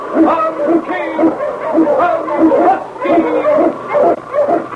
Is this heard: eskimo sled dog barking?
yes